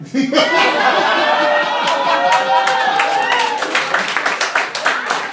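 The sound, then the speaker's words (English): A live audience laughs and cheers, with voices rising and falling, then breaks into steady, loud applause, a dense patter of many hands clapping that carries on to the end. “Saying is bad enough, applauding it is even worse.”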